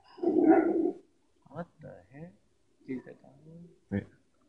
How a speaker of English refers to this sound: Oh. Who's that? It's another dog. They're playing around.